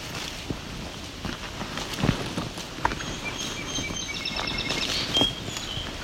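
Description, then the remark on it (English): A song sparrow sings, its thin, high trills and notes rising over steady outdoor ambience with soft footsteps crunching along a trail through juniper flats. “There was a song sparrow.”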